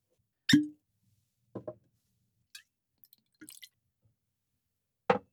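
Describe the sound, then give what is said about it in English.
Whisky poured into a glass in Scotland, heard as a handful of brief liquid glugs and drips spaced irregularly over a few seconds, with no talking. “Shall I pour? Yes.”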